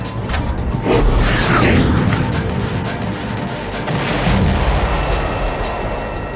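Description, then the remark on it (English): A missile strike explosion from a missile fired at insurgents by a US military drone (UAV) operator thousands of miles away: a loud, heavy blast followed by several seconds of rumbling, crackling roar that stays strong throughout and fades only slightly. No talking. “They have no idea their insurgent activities have been spotted, and no idea the UAV operator thousands of miles away is about to fire a missile at them.”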